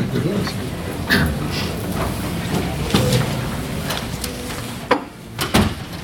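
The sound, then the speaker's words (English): A door swings shut with a solid thud amid the murmur and shuffling of a church audience at a worship service, with a couple of other bumps and clunks nearby. “would you get that door?”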